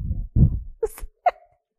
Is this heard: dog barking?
yes